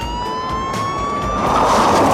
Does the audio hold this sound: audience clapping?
no